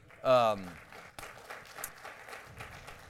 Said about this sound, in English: So thank you for applauding. He probably didn't hear it, but that's okay.